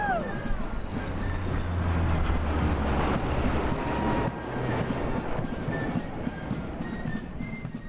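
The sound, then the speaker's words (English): A loud, steady roar of two slow-moving Lockheed C-130 Hercules transport planes passing overhead as a parade ended at the Capitol, their deep propeller drone and low hum filling the whole stretch with dense, rumbling noise. “when the parade ended at the Capitol, those were two slow-moving Lockheed C-130 Hercules transport planes.”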